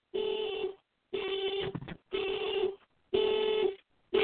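The speaker's own car alarm blares in a steady series of loud, buzzy horn honks, each lasting under a second with brief gaps between them. No one is talking.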